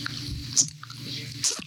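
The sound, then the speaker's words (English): A person imitates a cow chewing cud with wet, squishy mouth sounds, two sharper smacking bursts standing out over a low, steady murmur of moist chewing noises. “Now, if you've ever been around a cow or if you've ever seen a cow, have you ever realized that cows just sit there chewing all day? They literally just do this.”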